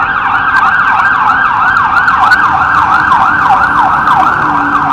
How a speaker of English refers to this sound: Hold on, the siren. I know.